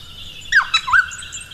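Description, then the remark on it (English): A noisy friarbird calls, giving a quick burst of two or three harsh, hiccuping notes that swoop and break, with no one talking over it. “I think it's a noisy fryer bird.”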